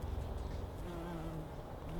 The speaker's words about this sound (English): However, after sitting here for a while and trying not to move, I've noticed a few of these worker bees have come back to check out this favorite flower.